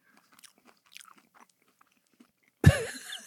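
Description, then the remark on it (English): Quiet crunching and chewing of a biscuit from Spain in scattered short bursts, then a sudden loud voiced exclamation near the end. “So we are now partaking of the biscuit.”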